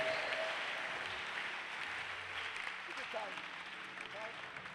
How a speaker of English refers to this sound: I thought you were clapping for Jesus.